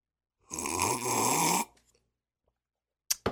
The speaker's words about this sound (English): And this is the part where I have another sip of water before my throat literally jumps out of my mouth and runs away from my body.